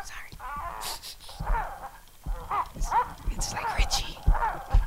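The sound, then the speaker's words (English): A novelty stuffed dog toy named Humphrey plays recorded sex noises: a rhythmic run of short, moan-like vocal bursts, about five or six, over soft thumping, moderately loud. “A stuffed dog that fucks and comes.”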